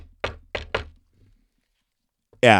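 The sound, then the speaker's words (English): Three sharp knocks on Sarah Connor's front door by the Terminator in the film The Terminator, the second and third close together, then a pause and a brief loud burst of voice at the end. “Oh, and by the way, fun fact, he always knocks like this.”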